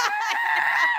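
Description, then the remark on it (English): A voice imitates a man's loud, yelling sneeze: a single honk-like shout lasting about a second, strained and nasal, with no other sounds around it. “He sneezes like 5 different ways and they're all yelling.”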